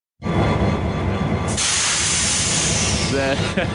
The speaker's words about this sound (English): You don't know what that is. But that was a steam train pulling in.